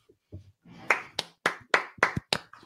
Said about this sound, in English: Golf clap.